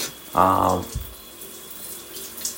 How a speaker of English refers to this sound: But yeah, sorry, I'm in the shower if there's any back noise.